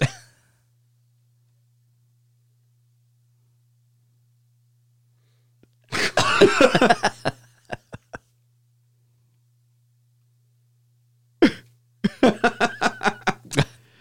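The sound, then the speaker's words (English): A baby who has just been picked up sneezes twice, fairly loud, with a short breathy build-up and quiet pauses between; the second sneeze is followed by a quick run of rhythmic, giggly breaths. “Bob just picked up little … who's about to sneeze.”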